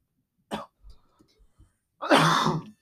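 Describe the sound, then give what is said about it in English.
Coughing after a drink went down the wrong pipe: one sharp cough, a few faint throaty sounds, then a longer, louder, raspy coughing burst. No talking. “Drink was down the wrong pipe.”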